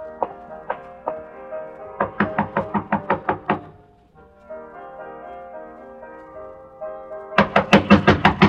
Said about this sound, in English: I waited for a few minutes after he left, and I walked up to her room and knocked on the door.